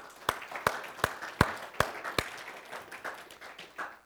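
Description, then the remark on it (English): Adults in an audience applaud the kids: a run of six sharp, evenly spaced claps stands out at first, then gives way to a softer, scattered patter of many hands clapping at moderate volume. “In fact, adults, let's give them a round of applause.”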